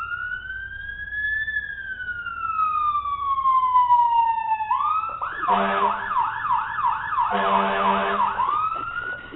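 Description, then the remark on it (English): A studio buzzer sound effect, hit by the host during a live sports show, plays a siren: a long tone that swoops up and slowly down, then turns into a loud, fast warbling wail, with no one talking over it. “And I can hit this buzzer meter over here.”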